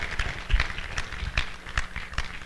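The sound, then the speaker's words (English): An audience claps together in a steady rhythmic beat as a clap offering of praise to the Lord, each clap landing at an even pace, moderately loud, with no talking over it. “Would you give the Lord a clap offering of praise?”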